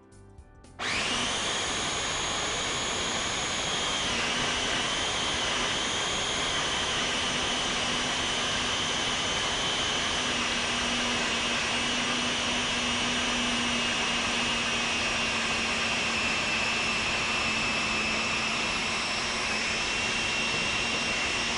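A food processor starts up and runs loudly and steadily for about twenty seconds while oil is poured in to emulsify a mixture of nuts, lemon, smoked almonds and sun-dried tomato; its motor gives a constant high-pitched whirring hum with a slight shift in pitch early on and no talking.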